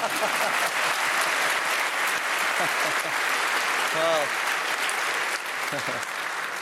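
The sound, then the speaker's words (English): Sustained, dense applause from a large audience at a Brexit debate, greeting an economist invited to argue for the motion, with a brief spoken word and a faint voice surfacing beneath the clapping. “Now the applause.”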